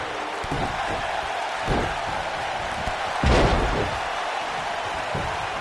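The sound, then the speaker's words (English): In a wrestling match, Edge body slams Jinder Mahal onto the ring mat: a deep, jolting, booming thud over steady arena crowd noise, preceded by a lighter impact moments earlier. “Slams him now.”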